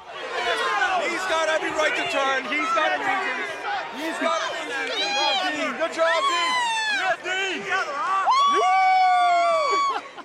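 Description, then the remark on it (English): A large wrestling arena crowd roars and boos continuously, loud and dense, while a man's voice shouts over the din, telling the booing crowd to give Dean Ambrose a break; his calls rise above the noise near the end. “And I can only assume Dean Ambrose's a close relative was there because you can clearly hear this guy telling the entire crowd that's booing that they should give Dean a break.”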